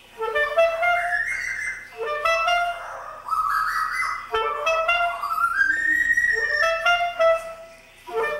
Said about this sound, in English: the sound recording of David Rothenberg playing his clarinet with a white-crested laughing thrush. Now, whether the bird sang along with him or he played along with the bird, either way, it's astonishing audio.